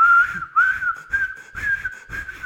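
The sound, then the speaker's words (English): A lifeguard blows a loud, shrill whistle several times in quick succession at a man standing on a high platform ledge, each burst a steady high tone with a slight upward slide, with no talking. “The lifeguard blew the shit out of his whistle.”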